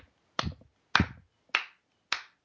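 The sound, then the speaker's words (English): A cat batting at a fan makes four sharp, snappy knocks at a steady rhythm, each a quick crack that fades fast, with no talking in between. “Is there like a cat hitting a fan in your room?”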